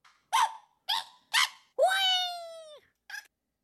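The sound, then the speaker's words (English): Three quick, harsh bird-like squawks, then one long drawn-out screech that sags slightly in pitch, and a final short squawk, loud and agitated, with no talking. “You seem to just be squawking angrily at me.”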